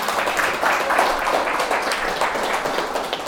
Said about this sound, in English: So let's clap it up for that.